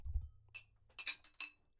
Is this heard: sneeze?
no